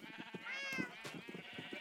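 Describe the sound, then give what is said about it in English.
Sheep bleating in a steady, overlapping chorus, their wavering, nasal calls blending together with one louder, quavering bleat rising above the rest midway. No one speaks. “And I hear a lot of sheep.”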